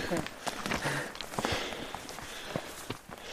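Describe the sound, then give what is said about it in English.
Heavy, labored breathing runs throughout while someone moves quickly at altitude, with a steady rhythm of footsteps crunching underneath. Faint voices come and go in the background. “Maybe you can tell from my breathing here, but I wasn't having quite as much fun.”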